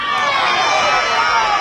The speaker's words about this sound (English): Now Orangefield getting their turn to yell and erupt at the umpire.